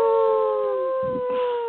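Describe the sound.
A person lets out one long, steady wolf-like howl, loud, holding a single pitch before tapering slightly, with a couple of brief muffled thumps near the end.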